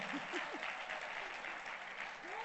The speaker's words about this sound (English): Clap your hands for Reverend sir. Amen.